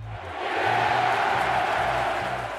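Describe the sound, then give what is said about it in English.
A large stadium crowd in Greater Manchester roars continuously as players take to a muddy pitch for a Manchester United versus Liverpool match, a dense wash of cheering voices that swells slightly and stays loud throughout, with a low rhythmic rumble underneath. “Now, the crowd's roaring like a lion with a splinter in its paw as the players take to the pitch.”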